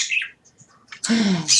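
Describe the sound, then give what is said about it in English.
A pet bird indoors gives a few quick high chirps, falls quiet, then lets out a loud, harsh squawk that lasts about half a second. No one speaks. “I'm getting ready to cover these birds.”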